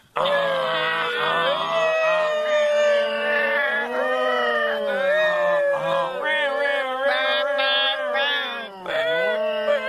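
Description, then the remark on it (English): A crowd of voices imitates a New York City fire truck siren and air horn as loud as they can on a count of three, loud wailing tones rising and falling together in a dense, continuous chorus for the whole stretch, with a brief dip near the end. “Now, I want to hear a New York City fire truck. Remember, the siren plus the air horn.”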